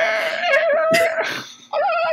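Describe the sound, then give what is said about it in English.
Someone imitates a dolphin with a loud, sustained squealing whistle broken by breathy bursts, then a brief dip before a final warbling squeak. No words are spoken. “That was a really good dolphin.”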